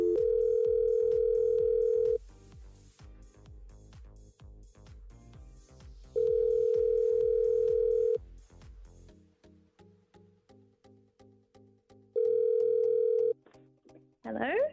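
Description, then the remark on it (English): A phone line rings out while a call is placed to a guest: a steady, low electronic ringback tone sounds in three long bursts separated by pauses, over a rhythmic music bed. “We're going to give her a buzz.”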